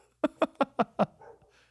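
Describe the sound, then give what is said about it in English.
A dog barks five times in a quick, evenly spaced run, sharp, then trails off into a soft grumble and faint breathing. “Well, the dog is mad at my Berlin Wall joke.”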